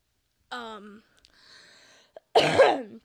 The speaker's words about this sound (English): Also still fighting off my cough. It's fun.